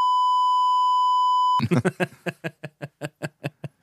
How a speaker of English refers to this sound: Can you save free Palestine on here and without getting demonetized? We'll find out. Where's the beep?